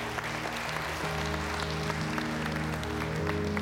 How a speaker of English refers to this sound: How many of you in here have felt yourself in the grip of his grace? Would you just do a hand clap right now if you've done that?